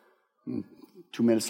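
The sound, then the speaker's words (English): A voice imitates someone knocking at a door at about 3 in the morning, making two short, loud vocal bursts, the second sharper and brighter, with no real knocking heard. “So we're there, and about 3 in the morning, I hear this. Well, somebody's at my door.”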